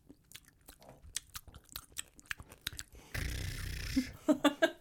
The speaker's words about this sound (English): What were you even advertising? Peanut M&Ms. ASMR M&M style. M&M ASMR style.